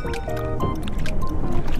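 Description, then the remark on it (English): Water sloshes and laps steadily against the hull of a small boat moving across a lake in Oakland, continuous, with a faint droning hum underneath. “Well, I will be keeping my hands and feet inside this boat at all times.”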